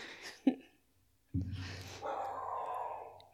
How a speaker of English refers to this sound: What the hell was that? The dogs did not like your comment, apparently.